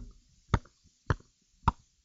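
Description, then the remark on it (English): Three short, hollow pops like a champagne cork, evenly spaced about half a second apart, each sharp and fairly loud against near silence. “Sound like they're opening up a champagne bottle.”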